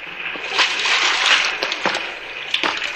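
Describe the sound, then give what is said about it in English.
Steady sloshing of shallow underground river water with a few sharper splashes every second or so, like someone wading or stepping in, with no voices. “Come on in, sailor. The water's fine. Shallow, too.”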